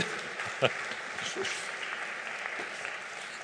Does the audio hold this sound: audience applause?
yes